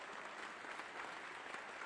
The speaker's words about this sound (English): Let's get a Lord a hand clap. Praise the Lord. Hallelujah. Hallelujah. Glory to God. Now don't just keep clapping.